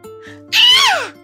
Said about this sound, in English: screamed. He shuffled to his feet and took off.